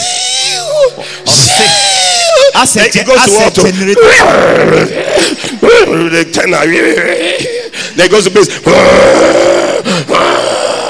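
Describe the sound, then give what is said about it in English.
A voice imitates loud snoring with rasping grunts and drawn-out moaning breaths, rising and falling in rough bursts, forceful, with other vocal noises mixed in throughout. “He said the man can snore, snoring.”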